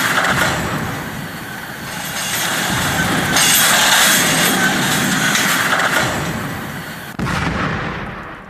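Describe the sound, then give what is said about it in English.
A loud, continuous roar of the War Metal Express train cars thundering past, with heavy rumbling and metallic clatter, swelling in the middle and cutting off abruptly into a fading rumble near the end as the train comes crashing down. “The rest of the War Metal Express screamed past Malone.”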